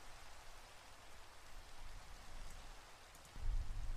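Steady rainfall makes a continuous, even hiss with no voices, and a deeper low rumble of thunder swells up in the final half-second.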